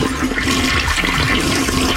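A toilet flushes, a loud, steady rush of swirling water that fills the whole two seconds without letting up. No voices are heard.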